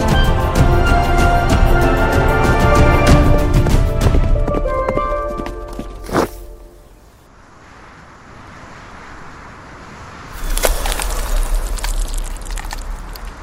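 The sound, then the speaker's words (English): Horse hooves gallop loudly for several seconds as a horse reaches the edge of a cliff and jumps into the air, fade into a brief quiet stretch after a sharp thud, then pound back in near the end. “And he's going to take a big horse jump into the air.”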